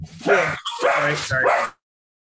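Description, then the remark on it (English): A dog yips and whines excitedly in three quick, high-pitched bursts, fairly loud, before going quiet. “Just give me one second while my dog's calmed down.”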